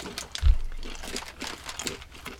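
Several people crunch spicy M&M's candies during a taste test, a run of crisp, irregular cracking bursts with one heavier bite early on, overlapping in a steady chewing clatter with no talking.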